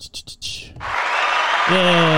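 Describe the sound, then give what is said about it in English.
An applause sound effect played from a button: after a few quick taps, a burst of crowd applause swells up and holds steady, with a voice cheering over the clapping toward the end. “So we got a little applause for you.”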